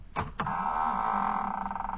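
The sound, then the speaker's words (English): The engine room door opens: two quick clunks of the latch, then a long, steady, whining creak with a slight wobble toward the end. No one speaks. “Yeah, there's a sign on the door, the engine room. Open it up there”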